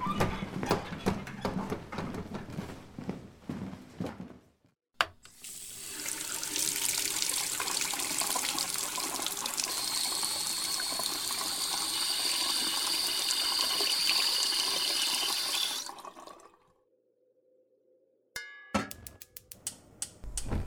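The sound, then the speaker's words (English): In a kitchen, water runs steadily from a tap into a kettle, to be warmed on the stove for hot chocolate, for about eleven seconds, a loud even rush. Clinks and clatter come before and after, and a low hum follows once the flow stops. “And while we're waiting for the kettle to warm up on the stove, I'll explain a little bit of the background to our first story.”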